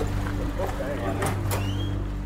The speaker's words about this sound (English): We arrive in Norway House, an indigenous community nestled on the north shore of Lake Winnipeg, and enter a local restaurant packed with a lunchtime crowd.